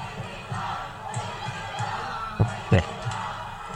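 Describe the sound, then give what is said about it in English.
A large crowd at a pro-Palestinian protest chants "take it down" in steady rhythmic bursts, loud and dense, as a protester on a roof removes an Israeli flag, with a couple of sharp knocks cutting through partway. “This piece of garbage has the nerve to take down the Israeli flag while a crowd is chanting, take it down, and then look what he's about to put up.”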